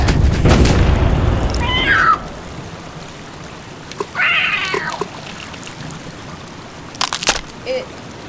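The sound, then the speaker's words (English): A loud, rumbling blast of a ship's cannons firing at a sea beast opens the scene, followed by shrill creature-like cries and a few sharp clattering hits scattered through a quieter background. “It dodged the cannons at close range.”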